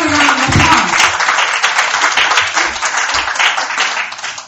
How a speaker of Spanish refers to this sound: Y me da un aplauso a Dios.